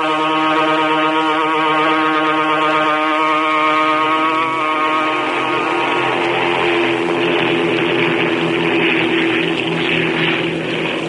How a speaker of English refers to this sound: Aboard the eastbound transport plane.